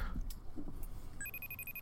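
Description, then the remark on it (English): A phone starts ringing partway through, a steady high electronic ringtone that pulses slightly and carries on to the end, following a few soft bumps and rustles. “Oh my gosh, it's ringing.”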